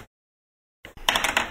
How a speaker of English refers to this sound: I'm going to roll now. I'm going to roll this dice now. And then I'm going to also roll this D6.